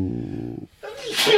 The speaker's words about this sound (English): And we got a sneeze.